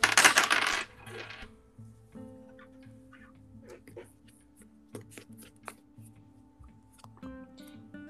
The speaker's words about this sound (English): Time to roll some dice. You ready for this? No. I need to find the right ones again. Give me a second. Okay, there we go.